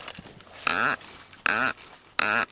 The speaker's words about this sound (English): This is a forester's drill. It's hollow. We'll turn it into the tree and extract a pencil diameter core that we can look at the rings with.